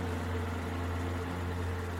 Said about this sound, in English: Shaking her head, she turned the key. The car rumbled to life, and she checked the mirror to back out.